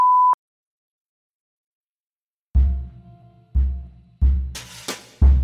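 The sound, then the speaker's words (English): A single short, steady electronic censor beep covering a spoken racial slur sounds at the start, followed by about two seconds of silence and then a series of four heavy, booming thuds. “but as I do not wish to offend or disturb anyone with audio of the spoken word, I will be censoring the racial slur with a beep.”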